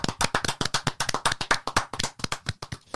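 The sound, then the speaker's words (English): A short burst of applause from a few people, sharp hand claps coming quickly and a little unevenly, fairly loud, with no talking over it. “Round of applause.”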